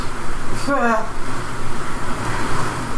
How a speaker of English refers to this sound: And this is the air conditioning break, kids.